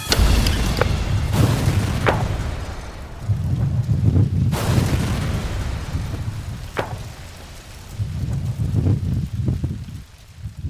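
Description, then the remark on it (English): A reconstructed car bomb, recreated by explosives expert Tony May and Special Agent Tom Mangan and placed in a car, explodes in a series of sharp, powerful blasts, the loudest about midway, with deep rolling rumble and wind noise filling the gaps between them. No one speaks. “This is all pieces from this last blast.”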